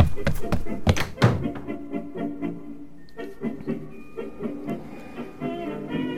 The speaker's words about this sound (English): And do close the door behind you.